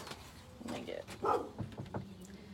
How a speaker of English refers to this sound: My dog's now barking at me because I came to the front door, and she's like, "What are you doing? Open the door, kids! Open the door!"